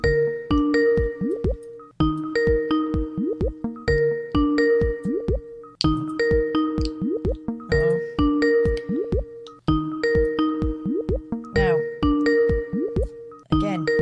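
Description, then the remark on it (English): An outgoing phone call returning a missed call rings, a short electronic melodic tone repeating steadily about every two seconds for the whole stretch, loud, with no one talking. “Let's call him back.”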